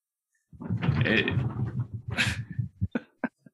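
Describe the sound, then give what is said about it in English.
Dogs, a blue heeler and a pit bull, bark and yowl in the background: a drawn-out, whining vocalization followed by a few short, sharp barks, moderately loud, with no one talking over them. “Can you hear the dogs in the background?”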